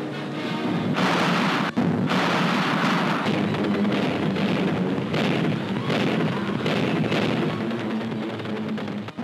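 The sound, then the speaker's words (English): A dense, continuous barrage of anti-aircraft gunfire from gun crews in wartime London, with loud booming shots and bursts overlapping in rapid, irregular succession, a thick rumbling roar that hardly lets up. “The theme is the struggle against the forces of evil, opening as the symphony of gunfire crashes into its overture.”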